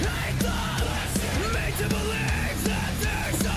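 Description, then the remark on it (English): A crowd of voices shouts together loudly and continuously, layered over a dense, driving musical backing for a few seconds. “Group shouts, bro.”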